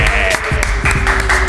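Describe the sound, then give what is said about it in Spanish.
A burst of loud applause fills the whole moment, dense rapid clapping with a steady roar, while voices seem to carry underneath it. “¡Aplauso, hombre!”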